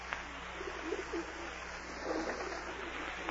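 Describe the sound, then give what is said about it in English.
Pigeons coo softly in a few low, rolling bursts over a steady outdoor hum, quiet, with brief pauses between calls. “Go away, pigeons.”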